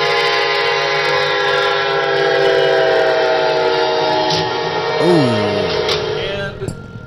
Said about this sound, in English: Somebody actually recorded the crash. Here we go. Hold on, guys. Here we go. So. You can hear the train coming. There's the car on the tracks, stuck.